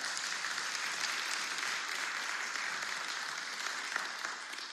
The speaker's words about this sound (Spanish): La que decía, dar un aplauso, claro que sí.